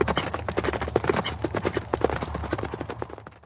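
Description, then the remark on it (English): Hooves clip-clop steadily on a hard surface, a brisk run of sharp knocks suggesting several horses moving together, over a low rumbling background, as Kirk and the away team ride stolen horses across the desert. “Be one with the horses.”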